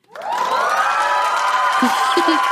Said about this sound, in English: And that audience was me screaming yes.